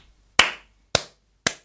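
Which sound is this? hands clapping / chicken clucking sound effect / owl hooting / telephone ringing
hands clapping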